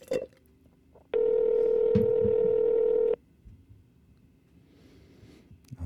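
A single ringback tone from an outgoing phone call sounds once: a steady, buzzy hum lasting about two seconds, clear and fairly loud, then quiet room noise.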